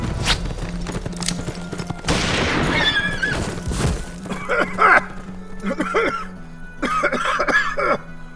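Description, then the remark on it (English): Several harsh, raspy coughs come in uneven bursts, fairly loud, with strained, throaty sounds between fits and a low background rumble. “As my cough subsided with the fading light of the evening, gritty footsteps surrounded me amid shadows that seemed miles high and blocked out the sun.”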